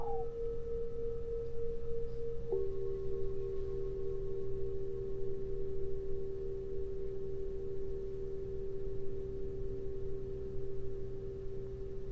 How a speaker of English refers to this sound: Breathe in as long as you can with the bell. Breathe slow as you can with the sound of that bell.